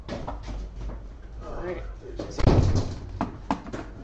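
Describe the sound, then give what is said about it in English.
A door bangs shut with a solid thud about midway through as a guest comes in, followed by a few lighter knocks and shuffles, while voices murmur in the background. “coming through the door.”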